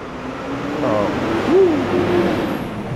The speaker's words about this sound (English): Passing cars, that go a lot. Yeah, I'm getting to a main road here, so we'll see how the recording happens here.